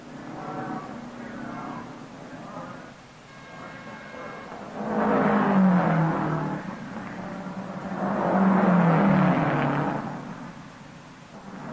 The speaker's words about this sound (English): The tires are changed at last. A crewman polishes the windshield as Holland moves away just 67 seconds after he stopped.